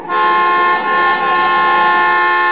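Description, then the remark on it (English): A car horn blares in one long, loud, sustained honk that holds steady for a few seconds as the car is driven fast along a curving road, with no voices over it. “What are you honking now for?”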